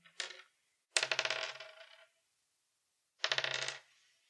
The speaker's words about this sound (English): Can you roll the dice one more time? Die. Sorry. 1.